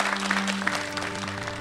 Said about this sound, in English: Everybody, give a big round of applause to our guests.